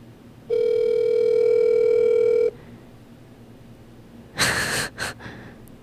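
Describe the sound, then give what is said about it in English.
A single steady two-second burst of an outgoing phone call's ringback tone, clear, followed by a pause and then a few short breathy puffs or gasps. “Is it ringing?”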